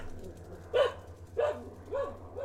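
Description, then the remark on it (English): A dog barks four times in a steady rhythm, each bark short and moderately loud, with a constant low hum running underneath. “You're gonna hear a lot of dogs barking.”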